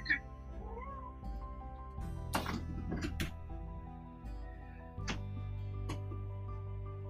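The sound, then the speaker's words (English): A cat meows a few times, wanting to be let outside, with a few sharp clunks and rustles and a steady low hum in the background. “my cat Roswell wants to go outside, so I'm gonna release her real quickly”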